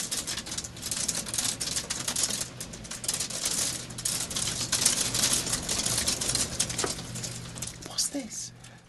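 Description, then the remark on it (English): Hail falls steadily outside in a dense, crackling patter of countless small hard impacts, sharp and bright, holding fairly loud throughout, with a faint voice surfacing briefly near the end. “I'm going to turn the mics right up, and then, listeners, you might be able to hear the authentic sound of hail.”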